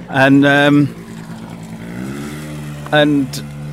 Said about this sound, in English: We'll just move out of the way. There's a motorbike coming.